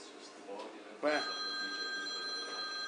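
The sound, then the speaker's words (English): A telephone starts ringing about a second in with a sharp onset as a caller's call comes in, then holds a steady, bright electronic ring to the end, loud over faint background voices. “I think we've got another caller coming in.”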